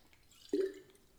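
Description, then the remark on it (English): One soft gulp of water as a speaker drinks, a short wet plop with a brief fading tail, heard alone against a quiet background with no one talking. “Sorry, I need some water.”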